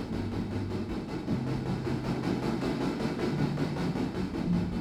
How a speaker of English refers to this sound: journey across an old rickety wooden bridge, weathered by the trips of thousands of trains and the raging river below that dangerously bends and sways from the weight of the freight.